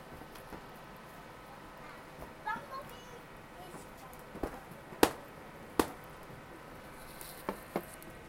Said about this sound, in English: So I scrunched up the piece of paper and I put it in this glass and it looks like it's filled with water. It's not.